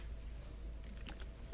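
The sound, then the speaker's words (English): Quiet mouth sounds of someone sipping and swallowing water, a short cluster of soft wet clicks and gulps over a low hum, with no talking. “Another roadblock, another sip of water.”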